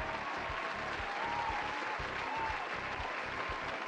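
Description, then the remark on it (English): A round of applause from a group, dense clapping with steady energy and a faint hum of crowd noise underneath, sustained for a few seconds. “We've made it through another academic year, and I feel like we all need a round of applause.”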